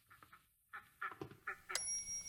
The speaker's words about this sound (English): Here are the ducks.